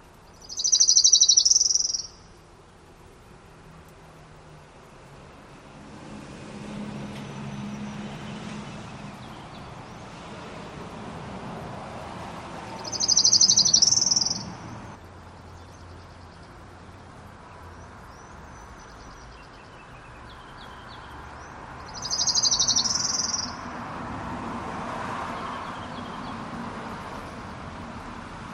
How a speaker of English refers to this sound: So here is the orange-crowned warbler.